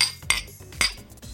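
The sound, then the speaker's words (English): Glasses of a hazy, piney, citrusy drink clink together in a toast: two bright, ringing taps about half a second apart, followed by a softer third knock, with no voices. “Cheers, guys. Cheers, boys. Cheers, guys.”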